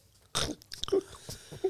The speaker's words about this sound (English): Oh, you didn't chew. Oh, no, you did.